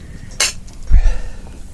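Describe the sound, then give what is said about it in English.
A single bright clink of whiskey glasses touched together in a toast rings out clear, followed by a soft low thud. No one speaks. “Well, that means we have to cheers. Drink. Cheers.”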